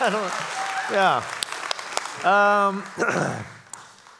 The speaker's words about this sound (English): Yes, I don't know what you're applauding, but you know, let's go for it. That's great.